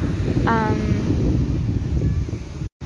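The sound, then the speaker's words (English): Ocean waves wash steadily onto a beach in a continuous low roar, with wind buffeting the microphone, a brief high call near the start and a short dropout near the end. “I find the sound of waves crashing very relaxing.”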